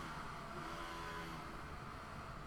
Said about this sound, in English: A nice addition from Portland traffic.